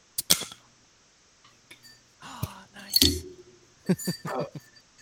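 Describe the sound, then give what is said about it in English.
Several sharp metallic pops and clinks as bottle caps are pried off, with a small cap clattering onto a hard floor, the bursts scattered unevenly across a few seconds. “My bottle cap hit the floor.”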